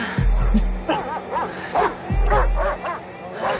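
Several dogs bark and yip in quick, overlapping bursts, loud, with a busy, excited rhythm and a faint background murmur.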